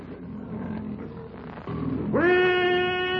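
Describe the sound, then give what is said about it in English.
A low, rumbling growl builds and then bursts into a loud, sustained roar of a huge, half-starved lion launching a rushing charge, rising in pitch and holding, powerful, with no talking. “As the fierce challenge of the bull ape rings out to mingle with the lion's roar, Tarzan, quick as a leopard, springs forward to thrust Kailuk out of the path of Numa's hurtling charge.”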